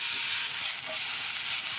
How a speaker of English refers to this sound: And some garlic. Be generous with it. Stir fry that. Just until the garlic starts to get aromatic. And then in go my mustard greens.